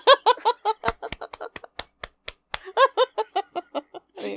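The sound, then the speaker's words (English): A woman claps in a brisk run of about eight or nine sharp hand claps in a steady rhythm, framed by bursts of cackling, high-pitched laughter before and after. “She clapped for that callback.”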